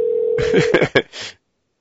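A steady, low electronic phone tone hums for under a second, like an outgoing call ringing, then cuts off as a voice starts talking over the line.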